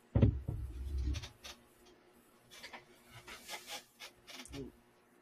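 A call connection breaking up: a muffled low thump, then choppy bursts of raspy, scratchy digital noise that stutter on and off for several seconds, with no clear speech.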